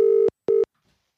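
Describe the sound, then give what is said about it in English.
Two steady electronic telephone tones, a longer beep then a shorter one separated by a brief gap, a ringback signal as a phone call is placed, clear and loud with no voices. “Right, let's get him on the phone. Let's give him a call.”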